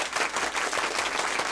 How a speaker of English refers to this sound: Yeah, 8 years. Oh, yes. That's a round of applause, man.